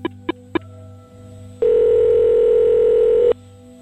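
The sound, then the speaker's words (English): Three quick keypad beeps, then a single long, steady ring tone of an outgoing phone call to a man living in Miami, clear over a faint low hum, with no one speaking. “after a quick brush through an online phone book, I found an Edward Putz living in Miami and gave him a call”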